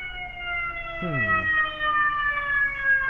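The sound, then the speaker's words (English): A fire truck siren wails steadily throughout, one of several fire trucks, its tone sliding slowly lower as it passes by outside, with a brief murmur of a voice partway through. “Okay, so more fire trucks, I guess. That's more fire trucks.”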